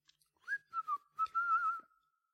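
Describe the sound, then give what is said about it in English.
A person whistles a short melodic phrase, clear, with bright sustained notes sliding between pitches in a few connected bursts, no talking. “I can imagine him whistling all the way through this film.”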